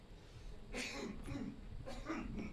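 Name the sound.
coughing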